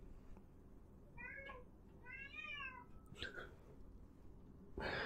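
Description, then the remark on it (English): A female cat meows insistently because she can't get out of a room, two drawn-out wavering meows followed by a shorter chirp, moderately loud over a low background hum. “losing her little cat mind because she can't get out of the room.”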